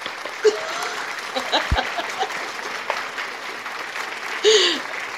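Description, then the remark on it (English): A burst of hand clapping applause from a group welcoming a person making an entrance, dense and steady throughout, with a few louder claps and scattered cheers or whoops rising above the crowd. “Okay, we got to give him his hand clap.”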